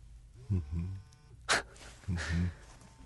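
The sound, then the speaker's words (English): A cell phone buzzing on silent: two short bursts of low, rattling vibration about a second and a half apart, with a brief sharp rustle between them against a quiet hum. “So my cell phone, though it's on silent, starts buzzing and going off.”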